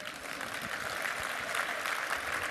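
An audience applauds itself steadily, many hands clapping at once in a dense, even wash of sound that holds at the same level from start to finish, with no voices over it.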